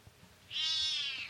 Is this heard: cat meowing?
yes